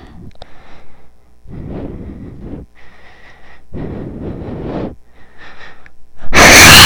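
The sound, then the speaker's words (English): Heavy breaths rush straight into a microphone in a steady in-and-out rhythm, about five breaths, ending with a sudden loud blast of air. No one speaks. “Sorry, I'm breathing into the mic.”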